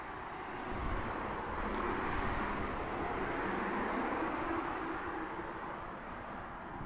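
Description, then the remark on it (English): A steady, low roar of street traffic at a bus stop fills the air, a constant wash of engine rumble and tyre noise at moderate loudness with no one speaking. “Eight minutes from this bus stop on the 93 to the station.”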